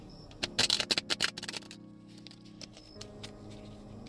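A crisp burst of rapid riffling clicks as a deck of tarot cards is shuffled during a tarot reading, followed by softer scattered taps and card handling, with no voices.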